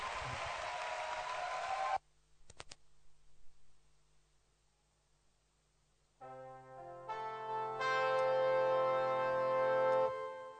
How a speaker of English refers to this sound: Clap your hands for him.